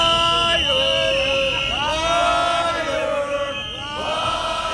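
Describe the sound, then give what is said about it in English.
A crowd of a couple of dozen people, the biggest group among them police officers heckling Mayor de Blasio, gathered outside a TV studio during his presidential campaign announcement, shouts and chants loudly and continuously, voices rising and falling together in drawn-out tones with no pauses. “At the announcement of his presidential campaign on TV last week, a crowd gathered outside the studio.”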